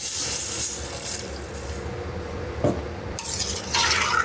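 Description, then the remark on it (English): A liter and a half of water pours steadily into a cooking pot with a continuous splashing hiss, followed by a brief clink of metal and a louder gush near the end. No one speaks. “So we're gonna add the water, a liter and a half of water. Ah, can you hear it?”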